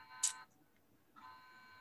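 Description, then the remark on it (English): A faint electronic buzzing comes in two bursts separated by a short pause, like an alarm clock going off. Nobody speaks. “It might be my husband's alarm clock, maybe.”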